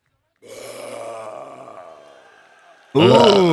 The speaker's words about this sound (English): What if that guy's just, the king of fucking burping, though, dude?